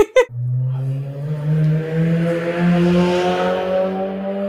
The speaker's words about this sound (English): Whoa, what was that? Somebody's breaking COVID. That was a fast car. I just had a motorbike drive past. Is that what you're talking about? Yeah. It was really loud.